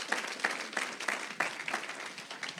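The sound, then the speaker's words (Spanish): A church audience breaks into applause for the Lord, a dense wash of many hands clapping with a few sharper, louder claps standing out in an uneven rhythm, sustained steadily for a few seconds. “Dele palmas al Señor.”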